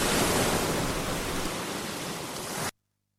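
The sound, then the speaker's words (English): Water laps and washes against a massive dock in a steady, hissing rush with no distinct pauses, then cuts off abruptly into silence. No one speaks. “When I get to the other side, there's a door that leads me out to a massive dock. When I step down near the water, I can see the boat.”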